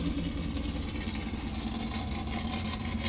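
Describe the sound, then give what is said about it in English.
The engine of a big 1450-class off-road race truck used as a pre-runner fires up and runs steadily at Oceano Dunes beach, a dense, throaty rumble with strong low-end harmonics and a rough, idling texture, loud and continuous throughout with no talking. “right now you can hear Darren Parsons' pre-runner fire up”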